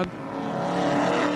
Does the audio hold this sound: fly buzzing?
no